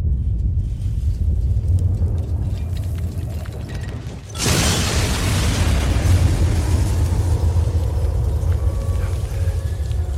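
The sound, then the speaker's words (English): A low, steady rumble builds until a sudden, massive explosion erupts partway through as a bomb blows up a city in a video game, seen from the top of a hotel at a far distance, followed by a loud, sustained roar of debris and rumbling that continues to the end. No one speaks. “So when you're up in the top of the hotel with the owner and he sets it off and you see the explosion, I thought that was it was neat to see that from such a far distance.”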